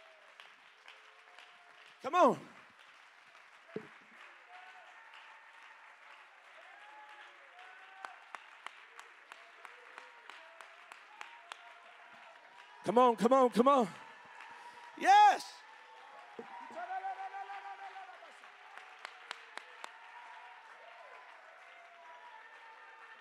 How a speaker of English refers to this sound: Let's give the Lord a great big hand clap of praise.